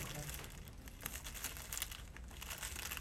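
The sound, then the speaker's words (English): Steady crinkling of a plastic cookie wrapper, a continuous rustle of sharp little crackles with a few louder crunches, lasting the whole few seconds. “When you breathe, it's more of a plastic bag kind of sound.”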